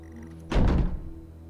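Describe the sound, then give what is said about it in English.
A house door thuds shut with a single heavy, muffled impact, followed by a brief low rumble as it settles, over a faint steady background hum. “Hear the door?”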